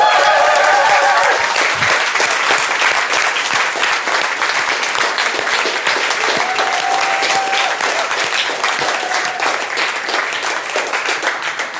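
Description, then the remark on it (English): A church audience bursts into sustained, loud applause for newly baptized people, dense overlapping claps filling the whole stretch with a few brief cheers and whistles rising above the steady clatter. “Shall we just stand and praise God and clap and appreciate what these guys are about to do?”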